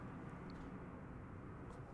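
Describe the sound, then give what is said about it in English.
A jet aircraft rumbles overhead, a steady low roar that holds at a constant level throughout, with no voices present. “Wow, it was a jet.”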